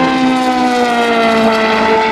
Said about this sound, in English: Listen to the LMP2, the Gibson's, the engines that they've got. They sound good.